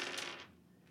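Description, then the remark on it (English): Dice clatter across a hard tabletop, a quick burst of bright clicking and rattling that settles within a second. The rolling is clear, and no one speaks over it. “You roll got two, this. Hit. Yeah. Blowing the dice.”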